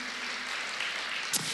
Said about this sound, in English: Come on, should we just give a big round of applause to our Camps Bay family?